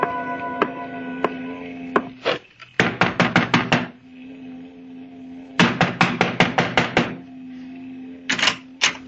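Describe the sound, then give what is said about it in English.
Loud knocking on a door: a few scattered raps, then several rapid volleys of five or six sharp, hard knocks each, over a steady low hum, with no talking. “You knock too loud”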